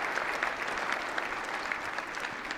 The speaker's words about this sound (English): And a special thanks to the 42% of you actually applauded.